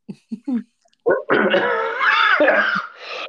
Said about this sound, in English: Oh, that's a nice smoker's cough you got going on there. That's a vape cough. excuse me. You had me laughing too while I was inhaling vape. So that was part of the issue there.